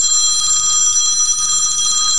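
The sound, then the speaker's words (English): A telephone rings loudly and continuously with a bright, rapidly trilling bell tone that holds steady throughout, with no voices. “Well, we're going to ring it up again later. Why don't you do it now? I'm going to put the phone down and I'll record it.”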